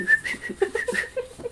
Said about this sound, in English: I'm gonna whistle it.